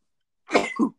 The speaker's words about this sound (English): Oh, I just sneezed everywhere.